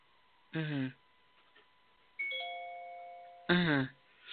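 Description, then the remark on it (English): A doorbell chimes once, its clear ringing tones sustaining and slowly fading, with brief bursts of a voice just before and right after the chime. “You hear me telling that fucking bell went off?”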